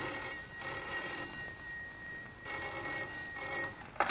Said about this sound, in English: Yet the trouble first appeared as the commonplace ringing of a telephone.